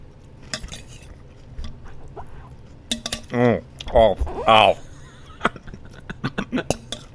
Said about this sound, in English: Actually, you know, if you could just give me, like, just some chewing noises for a while, I'll build a noise profile around that, and then I'll filter that out